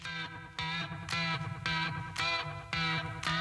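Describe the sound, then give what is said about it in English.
A heavily distorted rock riff plays loud, with thick fuzzy guitar or bass tones and hard, regular accents hitting about every half second. No voices are heard. “this song's called … by …”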